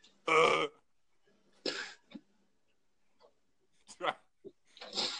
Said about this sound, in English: Bless you, sir.